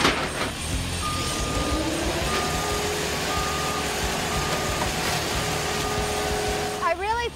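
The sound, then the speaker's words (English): Heavy machinery rumbles loudly and steadily as a car crusher flattens a Volvo onto a Chevy Astro van, to about 12 inches high, with a sustained hydraulic whine and rising tones over the din, then a brief warbling squeal near the end. “we're gonna go ahead and put it in our car flattener. It's called a crusher, and we're gonna crush it and make it about 12 inches high.”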